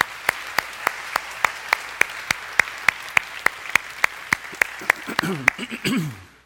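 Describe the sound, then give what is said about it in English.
An audience gives the dads a round of applause after a prayer, clapping in steady unison with about twenty sharp, evenly spaced claps in a brisk rhythm. It ends in a short swell of cheering voices as the clapping stops. “Let's give our dads a round of applause.”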